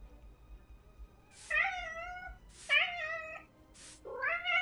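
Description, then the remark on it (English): A cat meows three times in fairly quick succession, each call drawn out and wavering, fairly loud over a quiet background with a faint low rumble. “Animal possession. A trick. Meow. I'll distract him.”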